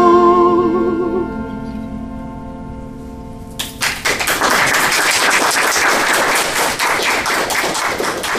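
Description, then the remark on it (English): A sustained sung note with steady harmonics fades out, then a crowd bursts into loud, dense applause that continues at full strength for several seconds. “Now, I think I'm going to ask people not to applaud because, first, it takes up some time.”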